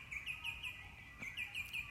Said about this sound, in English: Alrighty, that's what I got this morning, me and the birds. I love this whole, the songbirds sing their song of Thanksgiving. That's what my mentors taught me.